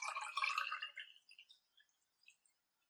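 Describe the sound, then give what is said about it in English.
Wine pours into a glass in a short gurgling splash lasting about a second, then trails off into a few scattered, quiet drips. “And if you actually just go ahead and... pour this in. I hope I don't spill all over my keyboard, because that would be really bad.”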